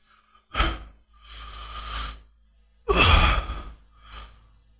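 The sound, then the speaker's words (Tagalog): Heavy, deep breathing: four loud, breathy in-and-out gasps in quick succession with short pauses between, from an exhausted member of a hiking group panting from fatigue during a hike. No talking. “Sa sunod-sunod at lalim ng kanyang paghinga na iyon, ay ramdam ko ang kanyang pagod.”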